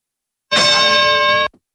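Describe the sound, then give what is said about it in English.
A single bright bell ding rings out loud and clear, holding steady for about a second with a rich metallic tone before cutting off abruptly. No voices are heard. “A little late on the bell there, buddy.”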